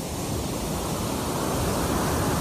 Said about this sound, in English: Uh-oh, big wave coming in. Hang on. Here it comes.